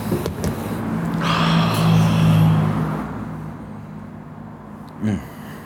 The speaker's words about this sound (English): Are you going to sniff it?